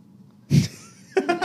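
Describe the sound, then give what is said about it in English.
A small child gives one sudden hiccup, then makes a couple of short, high little vocal sounds a moment later. “Hiccup.”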